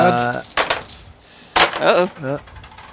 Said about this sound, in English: It's a roll off. There is another set of dice right behind your Mac. There you go. Let's see what we got.